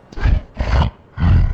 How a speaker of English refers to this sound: That's when the thing, it snorts just...